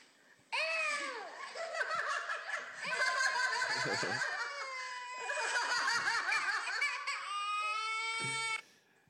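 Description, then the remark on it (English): A girl wails and sobs loudly for several seconds, while people laugh and snicker over her crying in bursts. “And she just immediately started crying, and that's they started hilarious. Laughing louder.”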